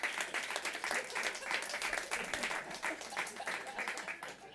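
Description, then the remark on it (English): An audience at a live stage show applauds steadily for several seconds, a dense wash of many hands clapping at an even loudness with a few scattered whoops mixed in. “They only appear when you applaud.”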